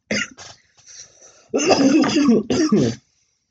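A harsh coughing fit: a couple of short coughs, a brief rasp of throat clearing, then a long, loud run of hacking coughs ending in one more burst.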